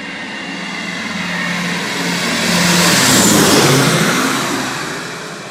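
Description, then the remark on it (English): Heavy propeller engines of a B-24 bomber, a mass-produced heavy bomber, drone steadily, swelling louder toward the middle as if passing overhead, then easing slightly; a dense, roaring rumble with no voices. “the B-24 bomber was not a marvel of aeronautical engineering.”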